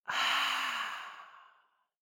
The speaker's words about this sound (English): And we're going to take a deep breath in and out and hold that one thing at the top. So breathing in, holding that one thing, and breathing out.